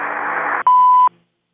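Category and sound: signal or alarm, answering machine beep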